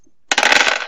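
Dice clatter across a hard tabletop in a quick burst of sharp rattling clicks, fairly loud, settling after about half a second with no voices; they are rolled for damage in a tabletop role-playing game.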